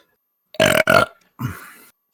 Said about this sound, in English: My baby burp.